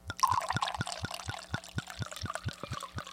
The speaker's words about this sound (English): That's a good pour. That's like a full pull, a tractor pull. You couldn't get a better sound effect. I know. This is legit. That was really good. Listen again, ladies and gentlemen. This is an actual live wine pour. Here in South Philadelphia